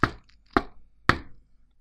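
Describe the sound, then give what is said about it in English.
A servant knocks three times on a stout, heavy wooden door at the top of a spiral staircase, each knock a loud, sharp thud with a short ringing decay, evenly spaced about half a second apart, with no voices. “At the top of the stairs, stout wooden door, upon which the servant knocks.”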